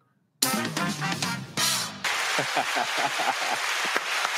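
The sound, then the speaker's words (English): A brief tonal, musical burst gives way to steady applause for the winner of a live-stream quiz, many overlapping claps forming a dense crackling wash that holds at an even, fairly loud level to the end. “Give me a round of applause for the winner.”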